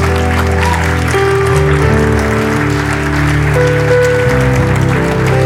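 An audience claps steadily and continuously as people come forward, the dense patter running throughout over sustained, held musical chords playing at a fairly loud level.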